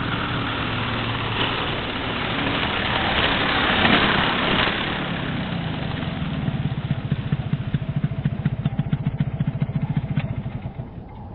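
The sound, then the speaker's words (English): An old car named Brunhilde runs roughly with a steady rumbling drone, then settles into a rapid, uneven clattering chug that sputters on until it fades near the end. “I think me and Brunhilde are going to need a tow back home.”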